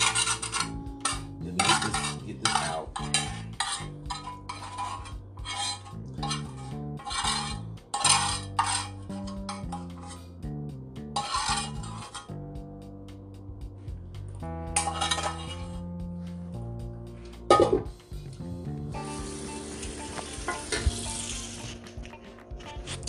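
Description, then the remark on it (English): Cutlery scrapes and clinks against dishes as someone scrapes and does the dishes, in a steady run of bright scratches and rattles, with a hissing rush like running water near the end. No one speaks. “Honey, hold on, let me do my dishes, and I'm gonna get back to y'all, so give me a few seconds, honey.”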